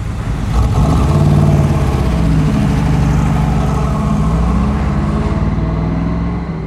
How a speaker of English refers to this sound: that's a very nice car. Mm-hmm, it is. Is it a Corvette? 67, L88. Listen to her sing.